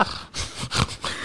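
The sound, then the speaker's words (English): Heavy, rapid, angry breathing, several harsh noisy breaths in quick succession with a wheezy, snorting edge, loud and alone with no talking. “They're just breathing all heavy.”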